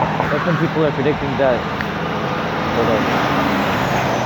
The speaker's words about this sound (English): Yeah, trucks kind of interrupt me a little bit.